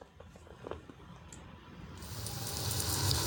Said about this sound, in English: Oh, it starts with rain.